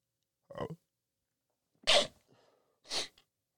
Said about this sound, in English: Nah, it's not a COVID sneeze. I promise to God it's not. Anyway, bless me.